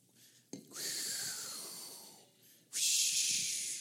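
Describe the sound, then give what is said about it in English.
A storm sound effect of rushing, breathy hiss, like wind or rain, in two bursts: a steady gust that slowly fades, then a brief gap and a louder, brighter surge. No one talks. “How's that? Stormy, huh?”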